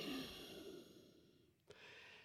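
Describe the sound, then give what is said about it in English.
A man breathes heavily into a courtroom microphone during a hearing, with a long audible exhale followed by a short sharp intake of breath, set against a faint background hum. “Did you hear him breathing there?”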